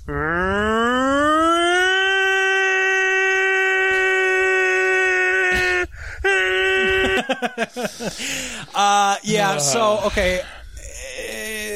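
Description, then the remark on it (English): A single voice imitates a tornado siren, a wail that climbs and then holds steady and loud for several seconds before breaking into choppy, wavering vocal sounds. “Okay, guys, I'm going to do a tornado siren once again.”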